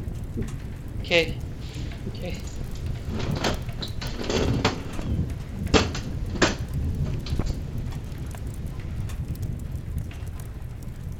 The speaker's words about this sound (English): The storm will be over soon.